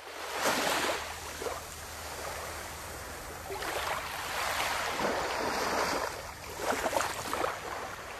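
Ocean waves wash and break in repeated broad surges, a steady hiss of surf swelling and receding every few seconds, with a low wind rumble underneath and no voices.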